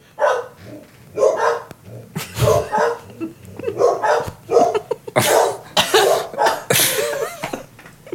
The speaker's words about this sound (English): two dogs are just barking their asses off